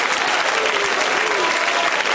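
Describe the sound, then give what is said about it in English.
A church audience claps their hands in loud, dense applause. The many overlapping claps blend into a steady wash of sound that holds evenly from start to finish. “Clap your hands if you believe God's about to give you the greatest gift you've ever received in your life.”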